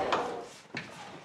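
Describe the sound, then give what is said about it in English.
A door being shut, heard as two soft wooden knocks about half a second apart, fairly quiet, with no voices over it. “be a dear and shut the door.”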